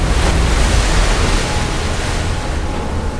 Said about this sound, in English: Topside on Gun 36, Sadaki is knocked off his feet in the shower of erupting seawater, but Takeo manages to catch his arm, stopping him from being washed across the deck.